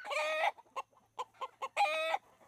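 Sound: chicken clucking sound effect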